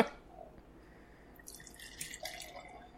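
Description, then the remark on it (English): Beer pours into a glass with a soft splash at first, then a bright, fizzy hiss of foam rising that grows stronger toward the end. The sound is moderately quiet, with no talking. “You want to pour me a little too?”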